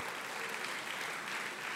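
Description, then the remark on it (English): An audience at a church sermon breaks into steady applause for God, a dense, even wash of many hands clapping at once with no individual claps standing out, sustained without pause and no voices heard over it. “And everyone will say, give God your applause.”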